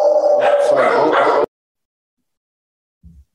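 A dog in a home office at KJ Live barks and whimpers in a loud, continuous burst of yelping noise lasting about a second and a half, then falls silent before a brief, faint low sound.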